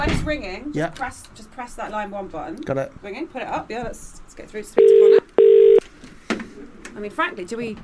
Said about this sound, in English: Just pick up the phone. Yes. Press the number.